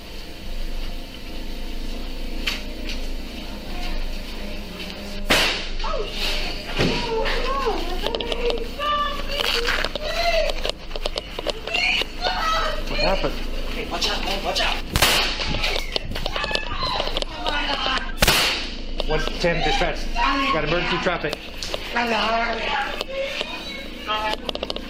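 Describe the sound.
Three sharp handgun shots, recorded on a police sergeant's body camera, crack out several seconds apart, loud, over a busy background of overlapping voices and noise. The first shot killed a caseworker; two more shots follow from the same weapon.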